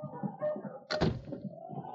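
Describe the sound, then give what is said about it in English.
A front door shuts with a single solid thunk about halfway through, fairly loud, set against a low, steady background murmur. “We have their guns, but keep them covered just in case while we're going out the front door.”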